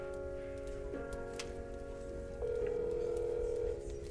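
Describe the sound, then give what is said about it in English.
An outgoing phone call rings on the line: a steady electronic ringback tone, then a pause, then a second slightly louder ring, heard over a low, rumbling background hiss. “Come on, Charlie, pick up. Please pick up.”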